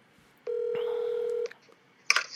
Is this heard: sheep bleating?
no